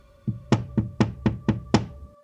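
Six sharp knocks rap against the glass of a printing shop door in a Portland neighborhood in a quick, fairly even rhythm, clear, with a faint steady hum in the background and no voices.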